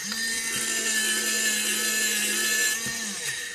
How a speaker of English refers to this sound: Oh, if you're wondering what that is, that's my electric pencil sharpener, which brings me to my next point.